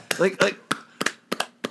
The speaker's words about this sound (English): So by the way, if you wear your class ring, your claps get a little bigger. They do. They're heavier. They're a little heavier.